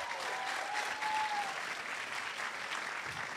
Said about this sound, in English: They keep clapping for Kevin Biegel.